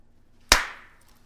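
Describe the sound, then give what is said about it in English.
A single sharp hand clap rings out on its own, a crisp, bright snap that fades quickly over a fraction of a second, with no voices around it. “Are we actually going to clap?”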